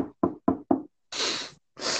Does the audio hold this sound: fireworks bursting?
no